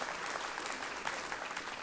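A crowd applauds steadily for people who came up on stage, a dense wash of many hands clapping at an even level throughout, with no voices standing out above it.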